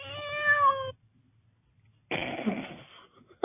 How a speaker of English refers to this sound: Is that a sound effect? Yes. Yay! I got a cat.